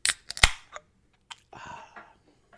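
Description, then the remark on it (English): A beer bottle is opened with a bottle opener: a few sharp metallic clicks and a clink as the opener catches the cap, then a short pop and a soft fizzing hiss of escaping gas. “I have an actual bottle tonight, so I got to get the opener.”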